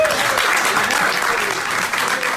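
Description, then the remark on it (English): A crowd claps steadily in a dense, sustained burst of applause, loud throughout, with no voices standing out. “Where's the crowd?”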